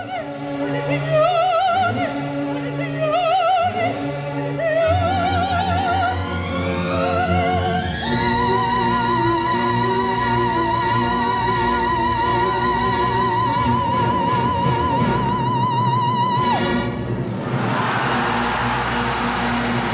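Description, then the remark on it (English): Over full orchestra, American soprano Leontine Price sings the aria Pace Pace from Verdi's La Forza del Destino at the Metropolitan Opera in New York, rising phrases with wide vibrato, then holds a long, ringing high B-flat for several seconds before it breaks off into a sudden roar of applause from a capacity crowd. “American soprano Leontine Price brings down the house with the high B-flat at the end of Pace Pace.”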